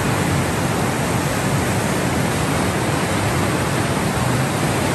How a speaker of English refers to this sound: The river's flowing really, really fast. Very powerful. There we go. So that's just, the river was so powerful.